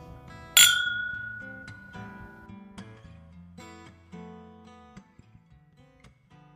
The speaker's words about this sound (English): Okay, we're back, and I swear one day our little glass clinky is going to turn into glass shattery. That'll be an interesting day, to say the least.